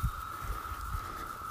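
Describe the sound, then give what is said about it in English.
Cicadas buzz in the trees overhead, a steady, unbroken mid-pitched drone with a static-like hiss that lasts the whole moment, with a few soft low thumps beneath it and no voices. “I want to make sure you hear all this static from the cicada.”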